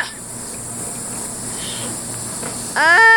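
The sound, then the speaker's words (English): Jeff Sessions opens a water bottle before giving a speech at the Federalist Society: a steady hiss and faint crackles, then a sudden louder burst near the end with a squeaky, rising plastic creak. No one speaks. “I brought up Jeff Sessions putting on his shoes, or no, opening a water bottle.”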